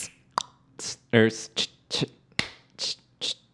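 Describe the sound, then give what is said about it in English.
A crisp, bright clap sample hits over and over in a song's beat, about two per second, with one short, lower tonal hit midway through the loop. “We've got the clap.”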